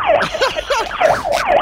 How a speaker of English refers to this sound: What was that? It's a siren. That's the no pants siren.